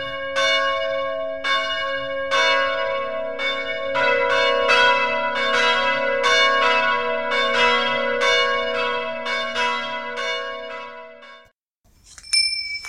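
Bells on a leather strap ring out loud, struck again and again in an uneven rhythm so their bright tones overlap, then cut off abruptly as the strap breaks, before a brief jangle at the end.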